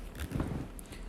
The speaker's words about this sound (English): I am eating a little snack, so if you hear a little rattle, I'm eating kettle-cooked original potato chips from Kroger. Love that kettle-cooked taste and crunch.